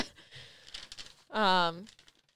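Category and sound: household object, paper pages being turned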